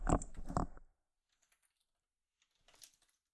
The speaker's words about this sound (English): Everybody could hear me typing.